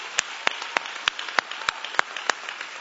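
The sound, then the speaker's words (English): An audience claps: a dense wash of applause with sharp, evenly spaced louder claps landing about three times a second, steady and fairly loud, with no talking. “Look, if you just want a raise, just clap.”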